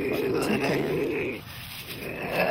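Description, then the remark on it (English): A low, rumbling growl, like a dog's, holds steady for a couple of seconds, fairly loud, briefly easing off midway before resuming. “That sounds like a real growl.”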